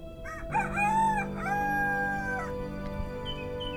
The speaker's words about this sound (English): Again, Peter denied it, and immediately a rooster crowed.